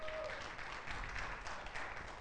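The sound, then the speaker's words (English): A large church audience applauds steadily, a dense wash of many hands clapping together at a constant loudness throughout, with no pauses and no voices standing out. “And Liberty Church, you ought to give yourself a round of applause.”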